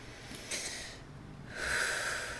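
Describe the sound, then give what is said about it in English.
A person imitates a dog snoring with two breathy, snorting exhales, the second longer and more rasping than the first. “Mom dog snore?”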